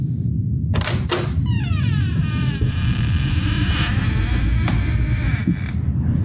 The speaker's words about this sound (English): As they opened the door